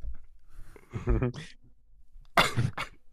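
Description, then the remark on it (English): A loud cough: a short throaty vocal sound, then a sharp, harsh burst followed by a quick second hack, with no talking around it. “No, I mean a cough.”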